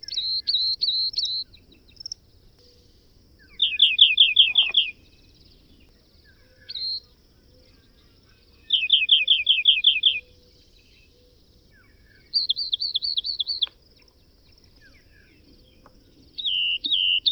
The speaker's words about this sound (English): For a rock wren, each song is a couple of seconds long.